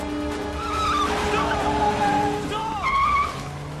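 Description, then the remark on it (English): Tires squeal and skid as cars behind a bus on a highway swerve around a police officer trying to wave them down, high screeching tones rising and bending over a steady engine rumble, loud, with a second squeal near the end. “So he starts trying to wave down the cars that are immediately behind the bus, and like the first two or three swerve around him.”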